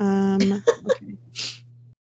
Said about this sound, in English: Oh, God, now I'm yawning. I know, I keep yawning.